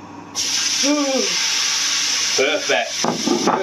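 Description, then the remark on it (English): Steak sizzles loudly and steadily in a hot griddle pan set on full heat to char the outside, a continuous bright crackling hiss, with a person's voice briefly speaking over it now and then. “Like, listen to the sizzle now. Listen to the sizzle.”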